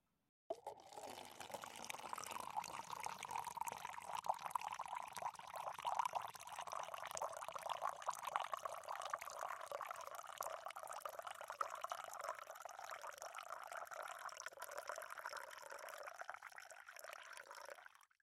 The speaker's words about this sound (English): You can pour the beer now. It's quite thick. Yes, so it's a bourbon barrel-aged stout, which means it's an imperial stout aged in bourbon barrels